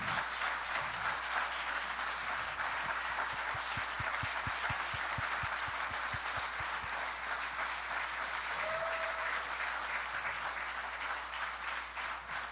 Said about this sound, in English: If you served in one of our armed forces or are currently serving, could you please stand? Could we just please applaud these men and women?